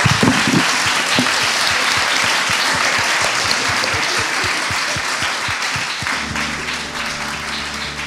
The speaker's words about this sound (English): Thank you for being a brilliant audience with great questions. And maybe I could have a round of applause for my brilliant panel as well.